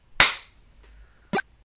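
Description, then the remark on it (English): A sharp, loud slap sound effect cracks once with a brief trailing decay, followed about a second later by a second shorter smack, with no voices present. “So that was a slap and then just a series of different fireballs that I've enjoyed throughout life.”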